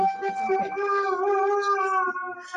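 A female dog, woken and set off by a passing siren, lets out a long, sustained howl, holding a steady mid-high pitch with a slight waver for a couple of seconds, with brief voices murmuring underneath at the start.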